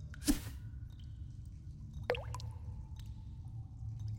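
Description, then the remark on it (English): A fishing line drops into calm water with a brief splashy burst, followed about two seconds later by a sharp, drip-like plop, both fairly quiet over a low steady background rumble. “Think you can sink your line down there, Jay?”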